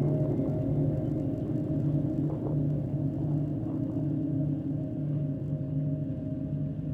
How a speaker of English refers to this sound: He'd been using them as a reverb unit, and sometimes the wind turned it into a huge Aeolian harp.